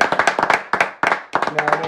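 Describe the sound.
A short burst of quick, uneven hand clapping, a dozen or so sharp claps close together from nearby, with a faint voice creeping in toward the end.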